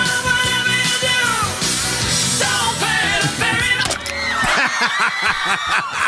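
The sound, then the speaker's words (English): Many people on a ferry boat scream and shriek at once, a loud, continuous tangle of overlapping high-pitched voices that rise and fall in panic for several seconds without letting up. “A lot of screaming.”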